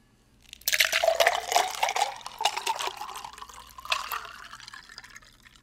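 A drink is poured into a glass, a steady splashing stream of liquid that runs for about five seconds before gradually thinning out and trailing off. No one speaks.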